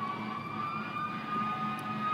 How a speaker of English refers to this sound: One more siren, folks. Okay, you know, it's such a beautiful day, we decided to sit outside, and of course that kind of came back to bite us in the rear.